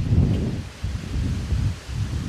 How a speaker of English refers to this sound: However, at around 1 p.m., the weather began to drastically change. The calm breeze blowing in from the ocean suddenly shifted to a strong wind coming in from the mountains.